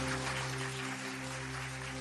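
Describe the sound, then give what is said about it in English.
A crowd claps and cheers in a steady, dense wash of noise lasting a couple of seconds, fairly quiet overall, with a low electrical hum running underneath. “Cheer them on and say, well done.”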